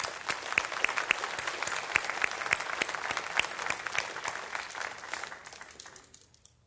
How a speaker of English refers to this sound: So I just want to commend you, all of you, and I think that y'all deserve another round of applause.